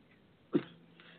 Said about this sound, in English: Sorry, I was trying not to choke. I was having a little coughing fit there. So pardon that bang.